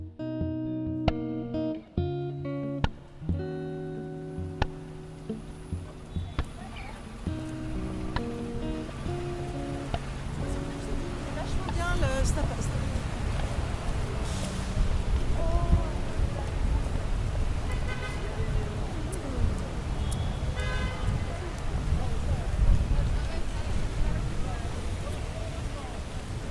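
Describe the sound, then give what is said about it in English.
Busy city street traffic noise in Birmingham, Alabama: a steady roar of passing cars with occasional horn toots, sounding loud and continuous, while murmured voices mingle in the background. “You're walking to the grocery store, the busy streets of Birmingham, Alabama, buzzing with the noise of city life.”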